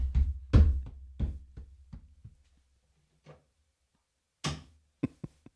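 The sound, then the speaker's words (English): A tiny, hollow door sound effect: a rapid run of light knocking thuds that slows and fades, a pause, then a few more sharp taps. No one speaks. “Our favorite sound tiny, effect. It's a very tiny and hollow door.”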